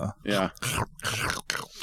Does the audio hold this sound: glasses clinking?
no